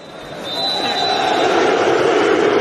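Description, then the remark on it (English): A large football crowd at Goodison boos at full time in a sustained, low, droning mass that swells louder after the first half second and holds steady, with a thin high whistle-like tone above it. “I feel like we've really pushed forward this area of study to the point now where you don't really have to look too far for audio of full-time Goodison booing.”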